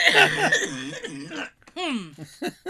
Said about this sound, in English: On the audio, we normally edit out the coughs, but I'm leaving that in because it's very natural.